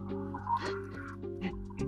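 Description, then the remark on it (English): Soft, scattered bird chirps and clucks drift in the background over a steady low hum, a few brief calls spaced irregularly, with no voices. “I just love the gentle bird noises in the background.”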